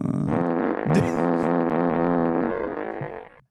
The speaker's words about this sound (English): It's a fart air horn. Why is it a reverb? Cool, why is there a reverb?